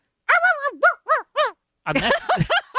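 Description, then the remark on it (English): A human voice imitates a barking dog in the radio show Suspense: a run of short, arching yelps, then a few rougher, breathier barks, fairly loud with no other talking. “You would think they would have found somebody that could do a really more... Really sound like a dog.”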